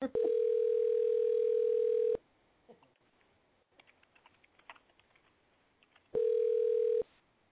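A phone line rings out while a call is placed live on air on the Ask Sue Show: a steady, mid-pitched ringback tone holds for about two seconds, falls silent with faint tapping and clicks, then sounds again briefly.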